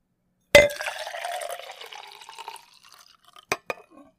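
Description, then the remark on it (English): Cold water splashes into a cup with a sharp initial pour, then trickles and gurgles for a couple of seconds before fading, followed by two quick clinks. “And followed by some cold water.”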